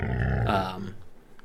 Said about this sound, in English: you guys hear growling surrounding you.